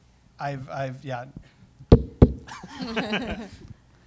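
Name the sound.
knocking on wood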